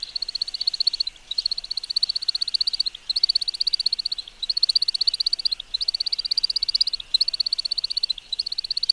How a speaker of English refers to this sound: He then descends, zigzagging and banking while singing. The air rushing over the male's outer primary wing feathers also produces a musical twittering sound during this flight.